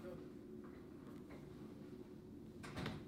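A door slams shut with a short, solid bang near the end, preceded by a fainter knock, all over a steady low background hum.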